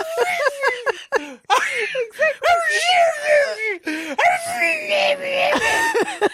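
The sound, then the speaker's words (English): A person vocally imitates a dog howling and screeching as it passes keys, with drawn-out wavering wails and sharp yelps, loud, lasting several seconds without pause. “That dog would be howling and screeching if it had keys coming out of its butt.”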